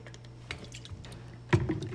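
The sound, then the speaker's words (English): Someone sips a drink: a couple of soft, wet slurping noises, the last one louder and fuller, over a low, steady background hum with no talking. “Let me sip my drink to this.”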